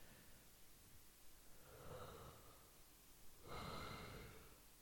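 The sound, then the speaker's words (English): A long, breathy yawn from a single person, swelling in two drawn-out waves and ending in a loud exhale, with no talking. “Sorry, there's just a big yawn there.”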